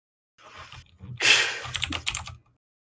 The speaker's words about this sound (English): I think they really like their mechanical keyboard.